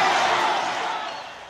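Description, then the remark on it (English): A dense, roaring stadium crowd rushes the field between games of a doubleheader after a disc jockey blew up disco records in center field, loud and steady at first, then easing off slightly as the wash of many voices continues. “Between games at tonight's doubleheader, A local disc jockey blew up disco records in center field, and a crowd responded by rushing the field.”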